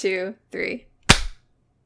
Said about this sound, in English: 1, 2, 3. I did a really soft clap. Okay. I didn't hear it, but that's fine.